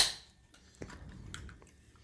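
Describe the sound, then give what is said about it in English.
A sharp crack and short fizzing hiss as a Strawberry Blast flavoured energy drink can is popped open, followed by a few faint clicks and small handling noises, with no talking. “I'm going to crack it open.”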